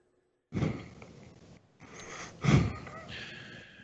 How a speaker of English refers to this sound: the kratom is affecting your breathing. The kratoms. What do you mean? It's affecting your breathing. I can hear you breathing. I know the mic's turned up a lot.